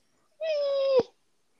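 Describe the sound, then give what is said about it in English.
A person makes a strained, cat-like vocal squeal, one steady, nasal note held for about half a second that cuts off abruptly with a small click, with no talking. “I don't know why I sounded like a cat having an aneurysm when I did that, but you're welcome.”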